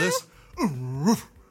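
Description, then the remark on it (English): A person imitates a lion's roar: a brief throaty burst, then one long, low, drawn-out vocal roar that swells and trails off. “I'll do the real lion.”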